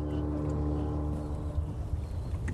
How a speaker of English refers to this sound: That boat is... That boat has come down all the way from Inchigill now.